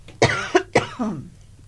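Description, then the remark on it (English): A short fit of three sharp coughs in quick succession, fairly loud, trailing off into a raspy throat-clearing rumble with no talking. “Excuse me, I just have to cough.”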